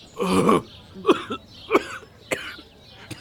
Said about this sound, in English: He coughs up some blood.